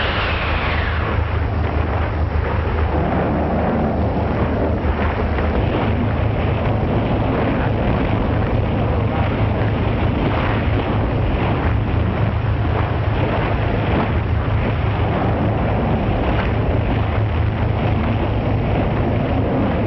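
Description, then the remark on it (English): Loud, roaring storm wind sweeps over crashing sea waves, a dense, continuous rush with gusting surges and a deep low rumble throughout, no voices present. “Boy, they'll be lucky to ride out this storm.”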